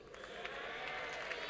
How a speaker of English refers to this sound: Somebody is clapping. You are not clapping for yourself. You have to think about others.